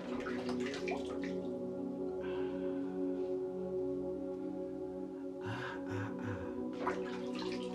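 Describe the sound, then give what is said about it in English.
Water splashes and trickles in a basin in short bursts near the start and again toward the end, set against a steady, humming musical drone that continues throughout. No one speaks. “Clean your hands and splash your face in the sacred water.”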